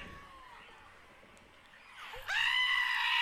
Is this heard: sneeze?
no